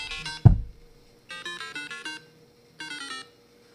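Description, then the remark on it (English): A phone ringtone for an incoming call plays in repeated melodic bursts, two clear rings separated by short pauses, loud, with a brief thump near the start and no talking. “Oh, we got a phone call.”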